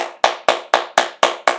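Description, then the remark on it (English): Steady, evenly spaced hand claps, about four per second, each a sharp bright smack with a quick decay. Roughly seven claps, fairly loud, with no voices. “Let's clap it up for you.”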